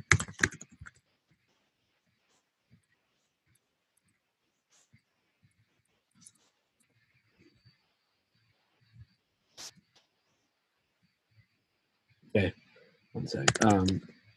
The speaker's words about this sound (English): Hold on. Let me finish typing the email out to you.